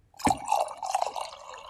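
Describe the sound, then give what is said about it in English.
Coffee, a Bajbok Inukshuk blend spiked with almond milk Baileys, pours into a cup held next to a microphone, a steady trickling stream with a few splashy drips, lasting under two seconds with no one talking. “So, you guys can hear me pour my drink.”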